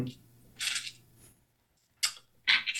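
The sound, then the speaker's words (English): A couple of real four-sided dice (D4s) rattle and clack as they are pulled out and handled, in three short, sharp bursts with quiet pauses between them over a faint low hum. “Sorry, I got to pull out a couple D4s. You know, I got the I only use real dice thing.”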